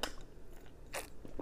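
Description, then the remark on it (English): A few short, wet sipping slurps of lemonade, with brief pauses between them, and no one talking. “I'm telling you, let me sip my lemonade.”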